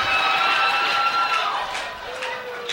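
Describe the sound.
An audience applauds and cheers in a steady, dense wash of clapping, with a few high whooping voices rising above it before the noise gradually thins out.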